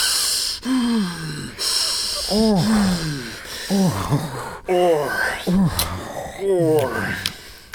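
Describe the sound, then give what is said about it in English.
A voice imitates the heavy, labored breathing of men walking: a string of loud, voiced huffs and gasping breaths in an uneven rhythm, with breathy hissing between them. “It's also really funny because, like, if the judges were mad about that girl chewing gum prior, they should be maybe a little mad about how heavy these guys are breathing.”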